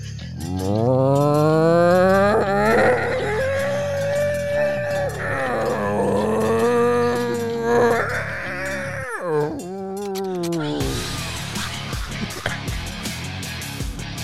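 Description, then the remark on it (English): A person loudly imitates a cow, producing long drawn-out moos with rising and wavering pitch, repeated several times over about ten seconds, followed by a noisier, rougher stretch. “That cow's sick. Betsy's in heat again. That cow's got minutes to live.”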